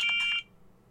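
A loud, shrill electronic alarm sounds in a quick burst of rapid pulses over a steady piercing tone, then cuts off abruptly, leaving only a faint low hum.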